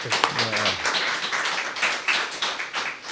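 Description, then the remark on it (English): A crowd applauds with a steady, dense patter of many hands clapping for about three seconds, welcoming author Will Brewer at a book reading event; a brief voice sounds at the very start before the clapping takes over. “Please join me in welcoming Will Brewer.”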